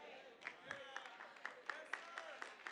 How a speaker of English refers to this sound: Yeah, you can clap over there. That's good news.